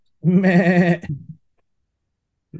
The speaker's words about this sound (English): The ghosts. Oh, okay, gotcha. I was wondering why there would be goats in my my man cave over here.